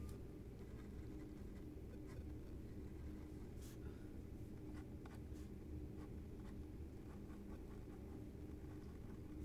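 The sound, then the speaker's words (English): Faint pencil strokes scratch across staff paper in a few short bursts as someone writes out triads, scattered irregularly over a steady low background rumble, with no clear talking. “You don't draw another staff line, you just draw a dash.”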